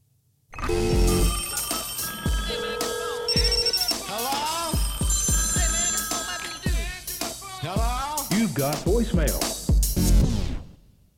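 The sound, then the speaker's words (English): A telephone rings amid a dense, loud mix of electronic tones and effects, with chopped voice-like snippets layered in, running continuously for about ten seconds before stopping abruptly. “And let's jump into the phones.”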